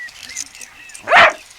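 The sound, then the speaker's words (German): One sharp, loud bark from a small black-and-white cocker spaniel rings out, preceded by a moment of faint, quiet background sound. “der schwarz-weiße Cockerspaniel, den Gabi ausnahmsweise auf die Sport- und Abenteuerwoche mitnehmen durfte”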